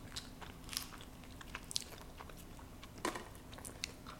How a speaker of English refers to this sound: It should be good to eat now. Good, right? Mm-hmm. Yeah, it is really good. So we just munch on these taquitos.